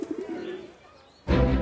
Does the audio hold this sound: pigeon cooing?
yes